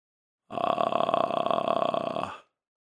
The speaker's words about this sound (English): We'll use this sound to start and end many of our exercises so that we don't start too harshly with our glottis or start with too much air flowing over our vocal cords. Here's an example of a vocal fry.